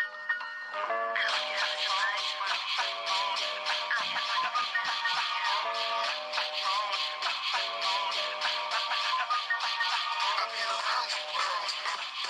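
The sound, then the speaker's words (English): A song plays continuously from a phone speaker, thin and tinny with no real bass, steady and fairly loud for about twelve seconds with no one talking over it. “I'm gonna blow your mind real quick if y'all even know what the fuck song I'm playing.”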